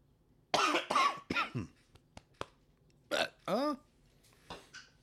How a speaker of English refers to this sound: got a scratch in my throat, sorry. Cough, baby.